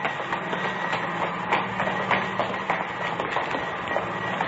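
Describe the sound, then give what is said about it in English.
A large air conditioning unit for a theater runs steadily, a loud continuous mechanical roar with a low droning hum and faint irregular rattles and clicks throughout, no voices. “Air conditioning unit for the theater.”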